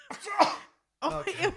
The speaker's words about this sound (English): Now I have to sneeze. Oh my God.